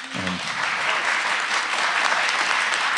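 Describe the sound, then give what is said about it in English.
Steady, loud applause from a crowd for a woman being thanked, a dense wash of clapping that holds evenly throughout, with a brief voice at the very start. “So y'all give her a big round of applause.”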